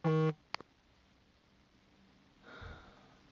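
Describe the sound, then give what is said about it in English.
A short, loud electronic buzz from a phone notification rings out once at the start, followed by a brief click and then faint rustling noise; no one speaks. “I apologize for all the buzzing. I really do. I apologize. I'm getting tons of notifications and text messages.”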